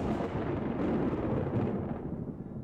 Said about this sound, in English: No walker. I love a lightning storm. Oh, me too, Dad.